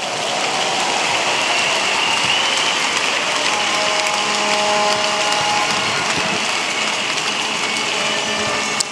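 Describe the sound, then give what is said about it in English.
A standing church audience applauds steadily and loudly as praise to the Lord, a dense, continuous wash of clapping that holds for several seconds with faint sustained tones underneath and no talking. “Give the Lord the biggest hand of praise.”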